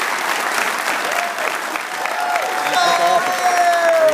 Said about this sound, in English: And I want everybody in this audience to not applaud just for him, but for yourselves. Let's have a round of applause for everybody here at Sacred Heart University.